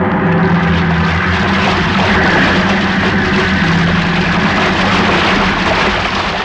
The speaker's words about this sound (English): Wait, look at the size of that wave. Huh? Great Jehoshaphat, we're going to take it on the port bow. Hang on!